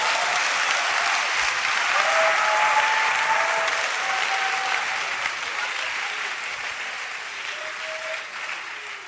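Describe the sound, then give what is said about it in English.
A crowd applauding steadily, a dense wash of many hands clapping at once that holds loud for several seconds and eases off slightly toward the end, with faint murmuring voices underneath. “Oh, clap for me.”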